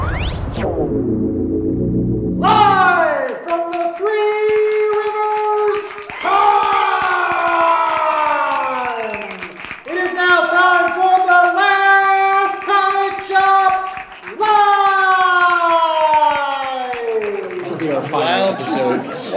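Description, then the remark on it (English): Loud, sustained screaming and yelling from several voices cheering after a countdown to The Last Comic Shop, long high-pitched wails that slide downward in pitch, coming in repeated bursts with brief dips between them. “So, yeah, don't be intimidated by the screaming lunatics.”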